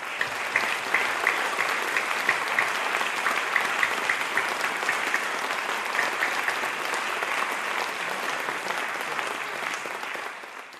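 Steady, sustained applause from an audience for Lord Sutherland after his lecture, a dense wash of many hands clapping at a constant loudness for about ten seconds before easing slightly at the end.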